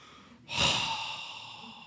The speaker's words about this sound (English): Or maybe the silent treatment with strategically timed heavy breathing.